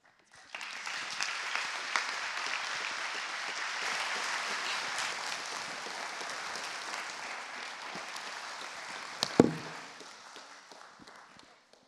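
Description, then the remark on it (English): A crowd claps steadily for about ten seconds, a dense wash of many hands at an even volume, with one sharp louder clap near the end before it tapers off. “Can you give it a round of applause again?”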